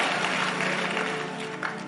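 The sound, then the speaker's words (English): A crowd claps hands steadily, a dense, continuous wash of applause filling the short stretch at fairly even loudness, with no individual claps standing out. “Clap your hands and say, I won't die some foolish death.”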